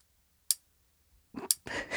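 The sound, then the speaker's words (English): A metronome ticks twice, about a second apart. Each tick is a sharp, bright click. A burst of broader rustling noise follows the second tick. “Metronome. That's the time ticking away with your nonsense.”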